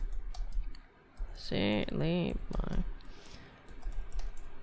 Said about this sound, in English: Hold on, I'm typing.